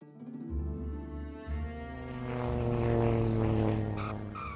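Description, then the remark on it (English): Kenneth Arnold's small propeller plane lands at the airport in Yakima, Washington, its engine a steady harmonic hum that swells louder and rougher as it passes, with no voices present. “After his unsettling experience above Mount Rainier, Kenneth Arnold landed his plane at the airport in nearby Yakima, Washington, feeling shaken.”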